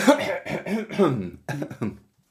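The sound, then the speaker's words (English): A person clears their throat, a short run of rough, voiced rasps and grunts over about two seconds, then silence. “Yeah, after you've cleared your throat, I'm fine.”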